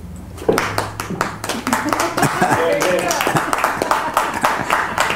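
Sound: audience applause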